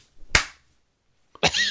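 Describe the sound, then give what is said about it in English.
Two sharp slaps land about a second apart. The first snaps and rings briefly into silence, and the second is followed by a short, bright tonal squeal. “Not two grown men slapping each other over the internet.”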